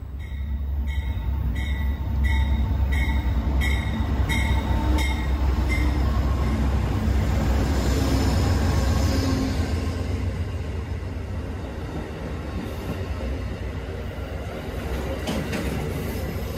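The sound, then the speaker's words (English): An Amtrak train rumbles steadily at a platform of Washington Station, its heavy low engine drone filling the scene, with a quick series of metallic clicks in the first few seconds and no voices, while people wait for the locomotives to be changed. “There's a number of people stood here on the platform at Washington Station, waiting for the locomotives to change.”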